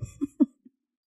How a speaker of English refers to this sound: I haven't been coughing like all morning, and as soon as I sit down to record my intro, I have just coughing fit after coughing fit. I'm completely out of breath right now, and now my voice has changed.